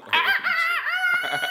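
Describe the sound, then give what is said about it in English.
A neighbor's rooster in a suburb crows once, loud, a long harmonic call that holds steady before dipping and trailing off with a few raspy breaks at the end. “My neighbor bought a fucking rooster, bro.”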